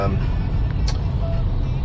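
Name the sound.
car driving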